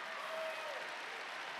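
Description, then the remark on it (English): A church audience claps hands together to praise God at the preacher's call, a dense, steady wash of many overlapping claps at even loudness throughout, with no voices standing out. “Clap your hands and praise Him if you know I'm preaching the truth today.”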